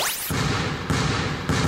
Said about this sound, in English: One dribble, lets it fly. He drills it!